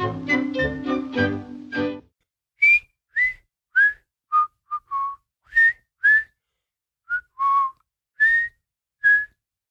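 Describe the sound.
A cartoon song tune whistled as a string of short, clear, pure notes that rise and fall in a bouncy melody, preceded by a brief burst of singing.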